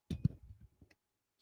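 A quick, quiet bout of shuffling: a dense burst of soft clicks and riffling taps up front, trailing into a few lighter ticks before it stops, with no voices.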